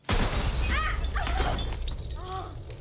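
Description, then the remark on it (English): A glass light in a diner shatters with a sudden loud crash as the lights flicker, and a sustained crackling spray of breaking shards follows for a couple of seconds, with brief voice-like sounds mixed in. “As she looks up at a light, it shatters, a piece of glass piercing her left eye.”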